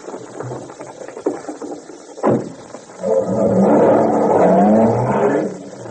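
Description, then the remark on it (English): A sharp thump, then a car engine roars to life and revs loudly for a couple of seconds before easing off as the car pulls away down the street. No one speaks. “Well, jump in the car and we'll follow the route they took.”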